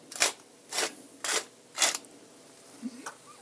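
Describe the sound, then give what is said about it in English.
Four short, gritty rasping grinds of black pepper from a pepper mill into a pan of olive oil and chopped onions on the stove, evenly spaced about half a second apart and moderately loud, followed by a couple of faint small clicks. “And then a few grinds of black pepper in there.”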